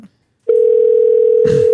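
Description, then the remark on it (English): A steady, unbroken electronic telephone ringing tone at a single mid pitch begins after a brief silence and holds loudly, with a short rustling burst near the end. “Let's see if he answers.”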